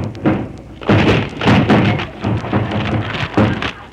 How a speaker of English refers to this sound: Now break down the door.